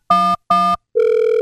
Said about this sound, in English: He jumped on the phone and called 911.